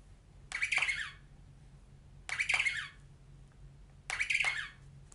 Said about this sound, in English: This is a baby penguin. She is called a chick. She lives in a very cold and icy place called the South Pole. Can you trill like a penguin chick? Let's ruffle the chick's feathers and hear her trill.